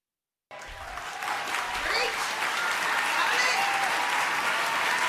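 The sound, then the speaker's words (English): A large audience breaks into sustained applause, starting abruptly after a moment of silence and building to a dense, steady roar of clapping with faint crowd murmur underneath. “There you go, clapping for baby killing.”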